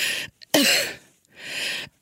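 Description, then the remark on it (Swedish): A breathy gasp for air, then an abrupt raspy cough, followed by another long wheezing inhalation, all performed on its own with no talking; the person cannot breathe and coughs because of an itch. “Då måste jag hämta luft så här. Kommer en host, för det kliar då också.”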